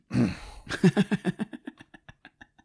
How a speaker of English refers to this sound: clearing his throat in a castle.